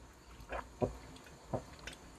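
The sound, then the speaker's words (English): Quiet sipping of water: a handful of soft, wet mouth and swallowing sounds spaced irregularly over a couple of seconds, with no talking. “But when I talk a lot on the mic, I have to have water right next to me.”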